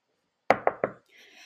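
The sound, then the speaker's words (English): Three quick, solid knocks on the door of room 320 in a steady rhythm, fairly loud, followed by a soft rustle or faint muffled movement afterward. “We went down to 320 and we knocked on the door.”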